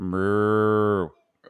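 A single long, low moo from a cow, steady, lasting about a second before cutting off, followed by a brief soft rustle.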